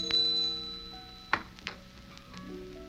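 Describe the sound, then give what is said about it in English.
A gate bell rings with faint, sustained metallic tones that linger and fade, broken by a couple of brief, sharp clinks partway through. No one speaks. “Suddenly there was a ringing at the gate bell.”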